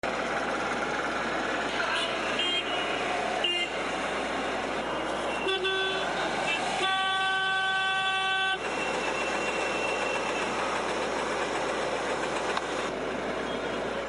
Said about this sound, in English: No Nihilist ASMR special for Thanksgiving would be complete without holiday traffic.